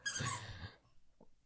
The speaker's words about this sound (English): And the dog is squeaky right now.